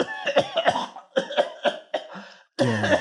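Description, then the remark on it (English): A voice imitates a female character's fit of hacking coughs as she falls over onto the ground, about six raspy, throaty bursts in an uneven rhythm, fairly loud, ending on a longer strained cough. “She falls over into a hump on the ground, and she's like coughing, Kind of slap her back.”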